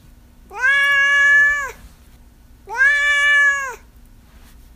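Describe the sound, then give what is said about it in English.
Duarte, a domestic cat, meows twice, each call long and drawn out with a rising-then-falling tone, separated by a short pause. The cat sounds fairly loud, with no talking. “Now it's time for Duarte's Corner, where, of course, my cat Duarte will share his opinions about the book and not about why he thinks he should get to do yoga.”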